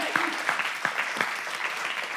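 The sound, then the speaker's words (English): A church audience claps together for their pastor in a dense, steady burst of applause, with a few sharper individual claps standing out at a moderate level throughout. “Can we give him a clap?”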